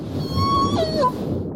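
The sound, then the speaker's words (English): A single honking call from a J-pod killer whale, with a buzzy, harmonic tone that holds steady, then dips and slides back up before fading, set over a low rumbling underwater background. “J-pod has this sort of honking sound. It goes up and down a little bit.”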